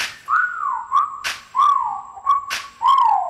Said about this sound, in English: Okay, time to whistle at her. Hey, girl, you made my whistle blow.